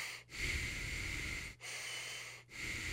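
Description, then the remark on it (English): A person imitates slow breathing through the nose: long, airy, hissing breaths separated by brief pauses, with no talking. “And the person is chilling at the point. Just breathing through his nose.”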